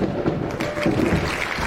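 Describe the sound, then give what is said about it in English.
A deep rolling rumble of thunder blends with the dense crackle of clapping, forming a steady, loud wash of noise that holds for under two seconds with no voices. “Thunder and applause.”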